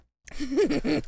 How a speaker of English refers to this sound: So, okay, as you can tell. Stop burping now? I'll try. Yeah, both we're going to try and stop burping, but no fucking promises.